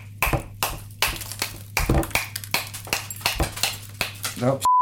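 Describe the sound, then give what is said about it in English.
The sharp edge of a long, heavy bar spoon whacks a large ice cube over and over to crush it for a drink, sharp clattering knocks coming in an irregular stream of roughly a dozen hits, with a low steady hum beneath and a brief ping at the end. “You probably heard all the whacks.”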